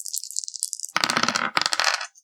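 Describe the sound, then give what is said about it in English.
Two six-sided dice and a ten-sided die rattle briefly in a cup or hand, then clatter across a hard table in two quick tumbling bursts, fairly loud, with no voices. “So I'm gonna be rolling 2d6 and a d10.”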